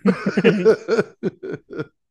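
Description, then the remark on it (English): A series of low, guttural belches from drinking beer, first a rumbling drawn-out burp and then several shorter, choppy ones in an uneven rhythm, fairly loud with no talking. “This beer is making me gassy.”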